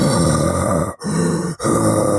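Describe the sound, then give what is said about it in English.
A voice imitates heavy breathing right up against a microphone: three loud, close, rasping, grunt-like breaths in quick succession, each separated by a brief pause. “But you're breathing into the mic is less sexy.”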